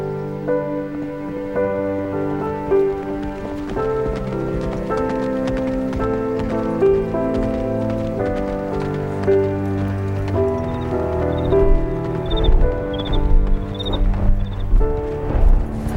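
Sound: horse hooves galloping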